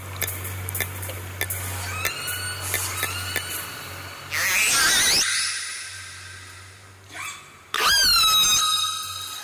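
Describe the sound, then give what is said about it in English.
Orca pod calls recorded underwater: the dialect of A-Clan, Springer's family, picked up by rescuers' microphones. A series of pulsed, whistling and squealing tones, some sweeping sharply upward, over a steady low hum, with two loud bursts of high rising squeals. “I want you to hear a sample of the actual dialect, the vocalizations that typify A-Clan, which is Springer's family.”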